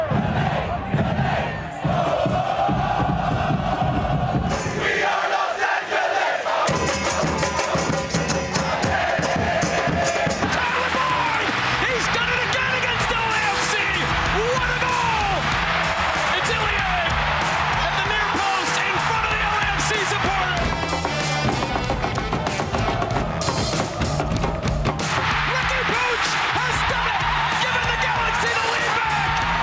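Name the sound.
stadium crowd cheering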